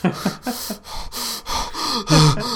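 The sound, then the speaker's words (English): A voice mimics heavy, exaggerated breathing, imitating Link from Skyward Sword: a run of rapid, gasping pants and huffs, getting louder and more strained toward the end with a vocal groan. “And then another picture of Skyward Sword Link with this intense expression on his face and heavy breathing.”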